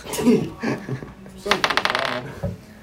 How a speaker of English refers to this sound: Did you just roll a nat 20?